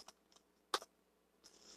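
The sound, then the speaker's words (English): A few sparse clicks on a computer keyboard with a stuck key, one louder clack standing out, followed by a softer rustle of keys; fairly quiet, with no voices. “And I got a key stuck on my keyboard here.”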